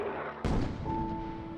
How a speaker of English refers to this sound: the medieval walls built on old Roman fortifications wouldn't have provided much protection against the heavy German artillery booming out from the valley below.